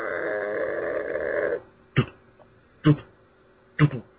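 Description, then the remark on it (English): A voice imitates a creaking door, a spare-room door swinging back and forth because someone left the window open, heard on a dark night: one long, strained, wavering creak, then three short creaks at an even rhythm. No other talk is heard. “the door was just going back and forth and it was creaking”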